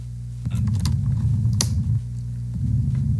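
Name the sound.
air conditioning running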